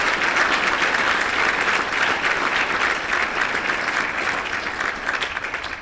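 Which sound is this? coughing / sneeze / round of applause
round of applause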